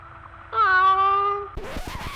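A single drawn-out cat meow, loud, holding a fairly steady pitch for about a second before breaking off into a brief, rougher vocal sound.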